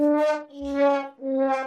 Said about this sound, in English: Let's have an air horn break. And a sad trombone.